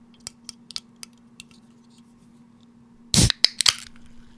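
A run of small, sharp clicks and ticks, then a short burst of bright fizzing hiss as a bottle of Nixie watermelon mint flavored sparkling water is opened, followed by a few crisp snaps over a low steady hum.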